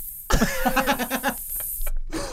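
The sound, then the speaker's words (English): A voice imitates pink noise with a loud, breathy, sustained hiss lasting about a second and a half, pulsing in quick rhythmic bursts before cutting off and briefly resuming. “Can I do my impression of Pink Noise?”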